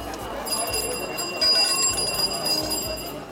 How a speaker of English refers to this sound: And then we went to Beijing, so much hustle and bustle. And the sound I really remember most distinctly was that of bicycle bells.